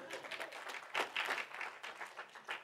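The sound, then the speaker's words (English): An audience claps and cheers in a dense, steady patter of many hands, swelling briefly near the middle before settling into an even burst of applause, fairly soft overall with no clear speech. “Well, cheer in the fact that he's come back. Go ahead, cheer.”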